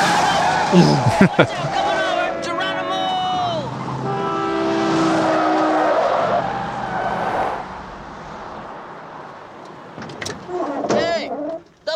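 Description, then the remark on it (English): A car screeches and skids to a halt to pick up a hitchhiker, a loud, drawn-out tire squeal with engine noise, followed by quieter rumbling and brief voices. “I love that car. The love machine.”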